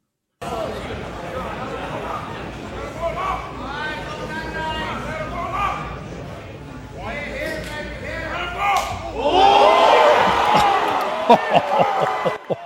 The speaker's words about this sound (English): This is the Slap League Women's Division. Made history.